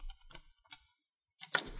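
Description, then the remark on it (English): A few small metallic clicks and rattles as a passkey works in the lock of hotel room 213, then a louder clunk and scrape as the door swings open. Nobody speaks. “The sergeant obtained a passkey from the clerk and went up to their room to investigate.”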